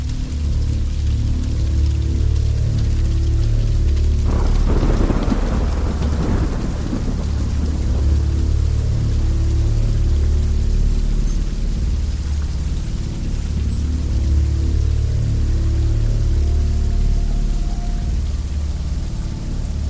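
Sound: heavy rain with thunder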